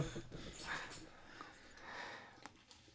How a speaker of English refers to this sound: My dogs are fighting.